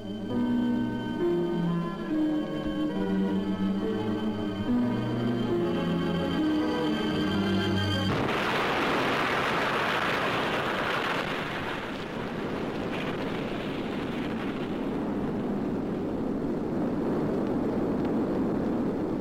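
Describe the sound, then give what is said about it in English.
Dramatic orchestral music from a period news clip plays for several seconds, then abruptly gives way to the loud, sustained roar of an atomic bomb test explosion at sea, throwing thousands of tons of water, mud and sand into the fireball, rumbling on steadily with no voices. “Thousands of tons of water, mud and sand blackened the gigantic fireball.”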